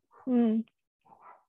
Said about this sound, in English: Woof woof, I hear your dog. Yeah, and my dog's a jerk. Your dog's a jerk.